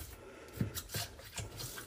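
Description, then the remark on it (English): Quiet scrubbing strokes from a small bottle brush pushed down inside a dishwasher to check for stuck noodles, several short rasping bursts in an uneven rhythm with a faint wet edge. No one is speaking. “I have this little bottle brush.”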